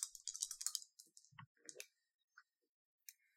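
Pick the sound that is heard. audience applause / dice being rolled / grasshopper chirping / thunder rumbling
dice being rolled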